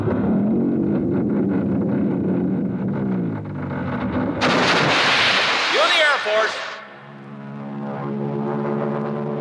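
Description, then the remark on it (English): A comic radio sound effect of a huge whipped-cream mountain rising: a heavy low rumble, then a loud hissing, splashing burst with rising whistles, settling into a deep foghorn-like drone. “All right, cue the mountain.”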